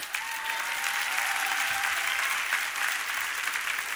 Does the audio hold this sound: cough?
no